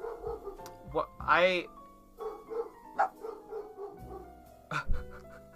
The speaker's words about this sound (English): Sorry for the interruption. We just have dogs in this house that like to bark at things.